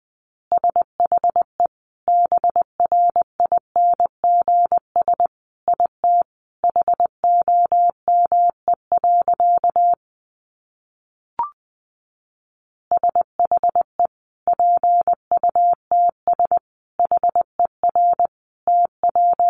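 Morse code sent at a brisk 20 words per minute: a steady mid-pitched tone keyed into rapid short and long beeps, broken by a brief silent gap midway, with no voices.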